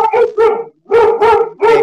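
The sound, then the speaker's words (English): A dog barks five times in quick succession, loud, with a brief pause after the second bark before three more sharp barks follow. “My dog wanted to be in the show.”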